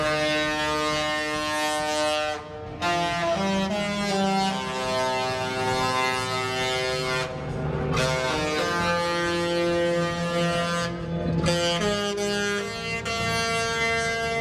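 A loud cruise ship horn plays a TV show theme melody as the ship departs, its brassy sustained notes stepping between pitches with brief breaks, echoing outdoors with wind noise and no talking.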